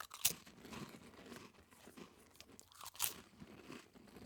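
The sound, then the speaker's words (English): Crisp crunching of dry saltine crackers with steady chewing during an attempt to eat six saltines in 60 seconds, two sharp bites standing out early and again near the end, wet mouth sounds filling the gaps. “And on that note, I will once again be attempting the 6 saltines in 60 seconds challenge.”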